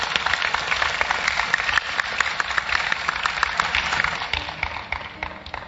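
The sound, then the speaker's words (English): A church audience claps for Jesus steadily for several seconds, a dense crackle of many hands at an even loudness that tapers slightly toward the end, with no voices over it. “Clap for Jesus.”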